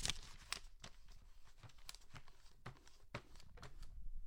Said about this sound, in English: That was just paper, not sheets. If your sheets sound like paper, that's not good, people. Get a higher thread count.